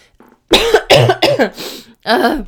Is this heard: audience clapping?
no